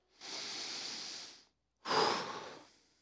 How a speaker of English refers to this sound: I find it helpful even to slow down my breath, my breathing, just to take a few deep breaths.